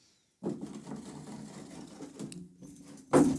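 Steady crinkly rustling and rummaging, like hands digging through a backpack, starting after a brief silence and ending with a louder, sharper rustle. No voices.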